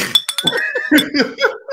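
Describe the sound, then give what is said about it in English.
Glasses clink together a couple of times with bright, ringing tones near the start, mixed with laughter and murmuring voices throughout the short moment. “You clinking me out there”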